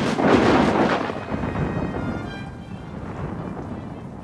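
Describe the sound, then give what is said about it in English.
A loud boom like an explosion or thunderclap, created by a film production's physical effects department, bursts at the start, then rolls into a long, rumbling, hissing decay that fades slowly over several seconds, with no voices. “When only the real thing will do, the physical effects department goes to work to create fire, explosions, and rain.”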